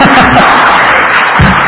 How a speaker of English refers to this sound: Yes, you can clap for him, it's fine.